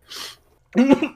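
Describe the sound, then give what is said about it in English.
A short breathy rasp, then a louder, gravelly throat-clearing cough with a low voiced grunt, all in about a second with no speech. “And you gotta spend the next 26 minutes clearing out your fucking throat like I do now.”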